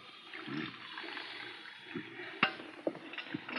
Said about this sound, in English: Look out, you're spilling the coffee.